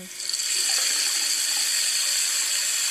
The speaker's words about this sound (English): Okay, that just sounds like just standard water being sprayed out of maybe a hose or something. Yeah, it's the tap running, like a Okay, tap faucet. running.